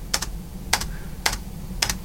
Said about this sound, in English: This is clearly illegal, so I'm going to tick that and bookmark it for reference. And in doing that, I'm going to be clicking on the spacebar.